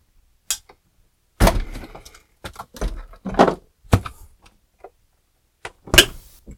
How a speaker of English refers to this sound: And I forgot to grab my ice cube, so we're going to do that real quick. And a little bit of an ice cube. Oh, I don't even have this thing going here, so we'll drop that down in there.